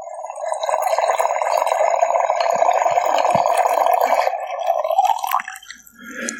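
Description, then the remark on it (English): Wine streams through an aerator with a steady, bubbling gurgle for about five seconds, fairly loud, then tapers off into a few soft drips and quiet handling sounds. “We ain't gotta pour it all because we fucking fancy.”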